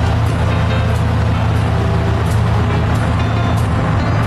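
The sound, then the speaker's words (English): An execution van's engine rumbles steadily, a deep continuous drone with road noise and faint hiss on top, like riding inside the van as it drives along. “So you got these guys driving, I guess what you call an execution van.”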